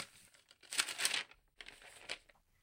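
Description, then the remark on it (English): Paper being crumpled and folded, with two bursts of crisp, crackling rustles separated by a brief pause, then a few softer crinkles fading out. No voices. “The rustle of papers as they were crumpled, folded, glued, and set pushed against the silence of the room.”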